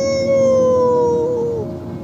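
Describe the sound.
A voice imitates a wolf howl: one long, loud wail held for nearly two seconds, sliding slightly downward in pitch before trailing off, with no talking over it.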